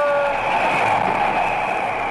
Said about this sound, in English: Looks like a train headed for Valley Ho. Well, hello, train, and goodbye!